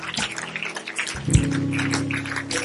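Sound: audience clapping hands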